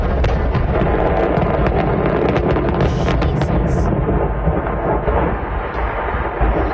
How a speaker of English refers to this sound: By the way, this is commercial fireworks. Right. So not the stuff that you just buy, you know, you go to Ventura. Stand, yeah, exactly. So this house, huge stack of commercial fireworks. Mm-hmm. And this is what it sounded like.